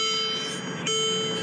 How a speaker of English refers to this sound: So we've been driving for an hour and 20. You're going to hear this beeping.